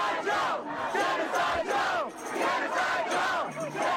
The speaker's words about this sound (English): And then you got the crowd chanting Genocide Joe for Joe Biden. Yeah. Because he's losing that base.